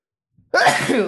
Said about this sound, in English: Sorry, I sneezed into the mic. Ew, you fucker. I couldn't mute it fast enough.